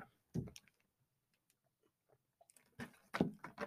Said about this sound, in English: So let me give me another sip of this. Sip of my co-host here.